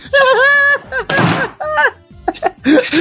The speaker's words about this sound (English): Is that the trophy actually falling over?